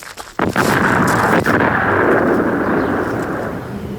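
A sudden loud blast from a car bomb blowing up a car by a garage erupts into a sustained, roaring rumble with crackling debris, slowly fading over several seconds.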